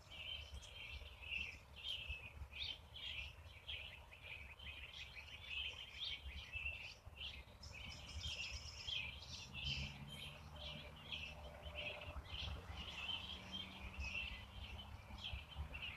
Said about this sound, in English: I think this is the most bird tweeting, chirping and singing that I've heard when I've come out back here with Max.